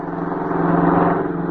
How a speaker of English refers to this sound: There it goes. How do you like that, Gillis? That's the third bus passed us right by. What do them drivers think we are, a stop sign?